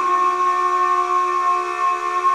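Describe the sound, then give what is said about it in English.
A screeching submarine dive alarm blares in one unbroken, steady wail, a harsh layered tone with a hissing edge that holds at full loudness for about two seconds, with no voices. “An alarm that somehow sounds like a car being ripped in half invades Jules' ears”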